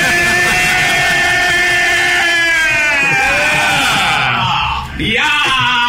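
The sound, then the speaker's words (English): A group of people in a bar scream and shriek excitedly together as Sherrod Small shows up, a loud, sustained wall of high voices that briefly dips near the end before surging again. “They just all start screaming because this guy who's scheduled to be there shows up.”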